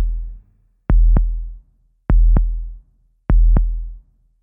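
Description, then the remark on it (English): A low, thumping heartbeat from a beating crystal heart found in a castle tower, with three double beats in a steady, slow rhythm, each lub-dub pair deep and fairly loud against an otherwise quiet background. “We got into the castle and started looking around, when we heard a low, strange thumping sound.”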